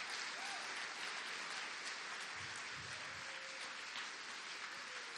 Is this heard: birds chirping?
no